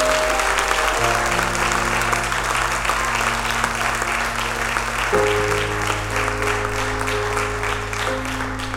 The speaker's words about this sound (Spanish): Le puedes dar un aplauso al Padre. Le puedes dar un aplauso al Padre.